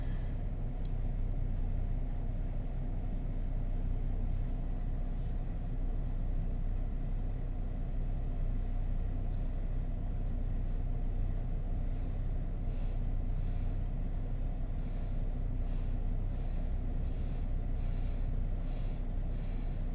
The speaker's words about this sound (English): Third round, beginning with a clearing breath, in through the nose, through the mouth, exhale, lips close, powerful inhale, powerful exhale. You can take a few rounds, 10 to 20 rounds, pause, observe, otherwise you're continuing the breathing.